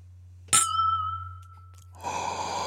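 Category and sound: household object, glasses clinking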